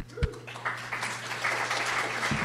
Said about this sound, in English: I just wanted to prove to everyone that there was a live audience here. Oh, you just all the clapping. I think you just won applause.